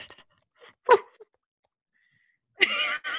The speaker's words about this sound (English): It's my cat using the litter box. We're going to have to not talk for a second.